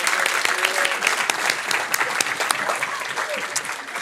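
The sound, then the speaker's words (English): An audience claps steadily for everyone who took part in a video, a dense wash of overlapping handclaps at an even volume for several seconds, with a few voices faintly audible beneath. “Why don't we give a round of applause for everyone who took part in that video?”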